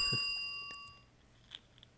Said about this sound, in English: There's a truth point. He's Can immediately we get a ding for the truth counter?